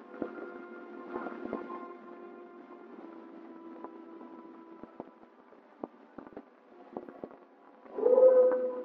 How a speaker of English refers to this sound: Holy waters, what's that? Wolves? The howl of wolves usually denotes nearness of game. That's good.